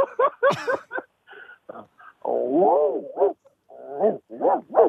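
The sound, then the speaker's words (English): A person's voice imitates a Dutch Shepherd dog, producing a string of harmonic barks, yelps and a drawn-out growling whine, loud, in an uneven rhythm with brief pauses between outbursts. “Okay, give me a Dutch Shepherd.”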